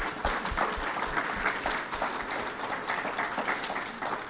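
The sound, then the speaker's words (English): A TV show audience applauds a woman steadily for several seconds, a dense, even clatter of many hands clapping at a fairly loud level with no voices over it. “Come on, give her a big hand clap.”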